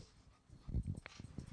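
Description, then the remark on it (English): A dog whimpers quietly in a few short, soft bursts, with no one talking. “I had to step away for the dog again.”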